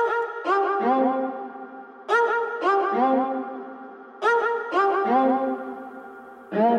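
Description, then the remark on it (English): A looping cello sample phrase of sustained low notes, each note duplicated by an eighth-note tape delay and washed in reverb from an RMX-16, cycling about every two seconds with no voices. “Of course, doesn't quite sound right, so I'll add some reverb with that RMX-16 and an eighth note tape delay, which duplicates each note right after it sounds.”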